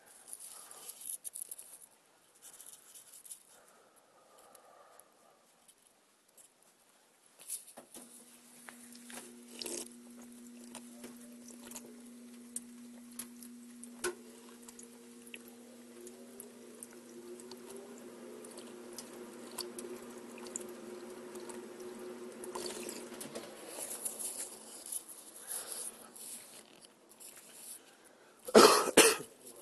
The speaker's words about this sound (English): But I need to take some water.